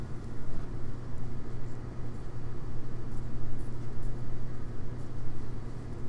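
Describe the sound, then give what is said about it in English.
A microwave oven cooking mac and cheese, with a minute 18 seconds left, runs with a steady, low electrical hum and a constant whirring drone that holds an even level throughout, with no voices. “And having said that, we have a minute 18 on the microwave left.”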